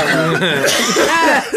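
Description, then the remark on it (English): A person coughs loudly in a rapid fit of several harsh bursts, with strained, voiced gasps between them. “Oh, shit, I'm coughing up my butt.”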